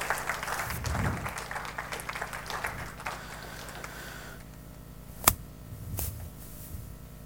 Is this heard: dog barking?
no